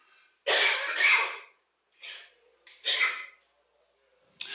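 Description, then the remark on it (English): A person coughs several times, a loud double cough followed by a couple of shorter, rougher coughs with brief pauses between them. “I'm gonna have to turn this off, cough, I'll be right back.”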